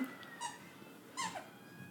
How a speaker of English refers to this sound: Snoopy has a squeaker toy. He squeaks in agreement.